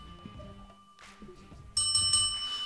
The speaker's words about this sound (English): I think it's that bell, you know.